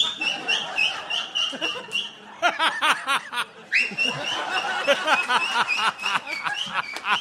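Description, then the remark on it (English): Someone whistles in a warbling, chirpy way, sliding between long held notes and quick fluttering trills, steady and fairly loud for several seconds with no talking. “What are you doing with your whistling?”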